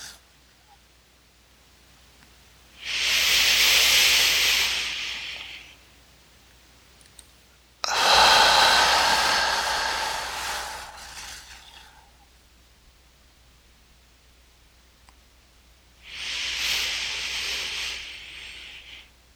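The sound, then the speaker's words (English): Three long, deep breaths pushed out in a slow, steady rhythm during a paced breathing exercise, each a loud airy whoosh lasting a few seconds, with quiet pauses in between and no talking. “You're ready, returning to normal breathing.”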